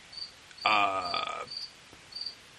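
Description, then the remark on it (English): A cricket chirps in short, high, evenly spaced bursts throughout, fairly soft. Midway, a louder, tonal, drawn-out call briefly rises over the chirping. No one speaks. “Shut up, Cricket. I'm trying to fucking talk here.”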